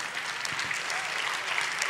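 An audience claps steadily, a dense, even wash of many hands with no breaks and no one speaking over it.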